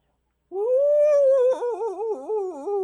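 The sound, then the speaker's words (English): A dog next door lets out one long, drawn-out howl that wavers up and down in pitch for over two seconds, fairly loud, with no other sounds around it. “The dog next door.”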